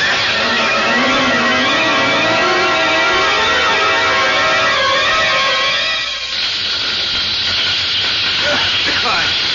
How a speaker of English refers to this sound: Stop! Fire! There's fire all over the place! Yes, that must have been a firebomb.